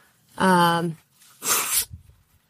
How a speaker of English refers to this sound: I'm so sorry for blow my nose on the mic. I will say my allergies are so bad here in Louisville.